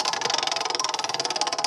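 A prize wheel spun for a lightning round, its clicker ticking in a fast, steady, bright rattle of about fifteen clicks per second that keeps going throughout, with no voices over it.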